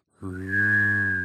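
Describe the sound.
A person imitates a whistling robot droid with their voice, holding one steady high whistle over a low hummed tone for about a second, clear with no other sounds.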